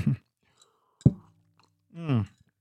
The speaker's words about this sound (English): I'm drinking at the moment. Delicious Peruvian hot chocolate, 100% chocolate. The music. I taste a little sip.